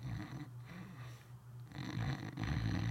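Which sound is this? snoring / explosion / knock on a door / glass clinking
snoring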